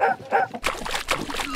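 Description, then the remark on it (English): A dog lets out two short whiny yips, then laps and sloshes noisily at water in a toilet in quick, wet splashy bursts. “stop drinking from the toilet.”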